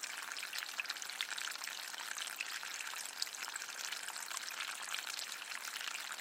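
Continuous gentle trickling and splashing of water from a small solar fountain, steady, with a bright, fizzy texture and no talking.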